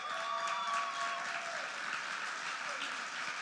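Steady, dense applause from a standing audience welcoming a speaker fills the whole stretch, with bright whistle-like tones rising briefly above it early on.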